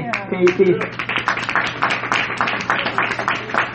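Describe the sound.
A crowd breaks into steady applause, dense irregular claps continuing throughout, with a raised voice calling out briefly at the start before the clapping carries on alone.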